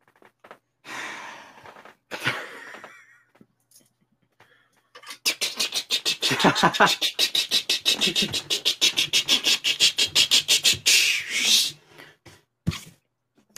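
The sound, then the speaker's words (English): A rapid, rhythmic run of clicky, rattling pulses lasting several seconds, like the brick-building sound effect of the Lego Star Wars video game, seemingly imitated with the mouth, after a few short breathy bursts. “You heard the Lego Star Wars building sounds, you know?”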